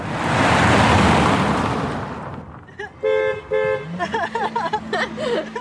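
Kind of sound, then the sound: vehicle, car horn beeping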